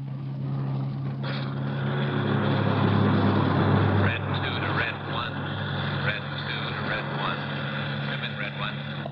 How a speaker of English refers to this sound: He drove out Sunset Boulevard to the Pacific Coast Highway and turned right. We drove for about 40 minutes.